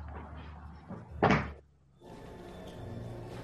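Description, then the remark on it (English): A drawer labelled Sharps slides open in one short, scraping rush, fairly loud, set against a low steady hum that gives way to quiet room tone afterward. “So we see Chucky's hand open up a drawer that says Sharps.”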